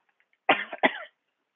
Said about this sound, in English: So I'll be taking breaks here, just because every time I talk, I start coughing here.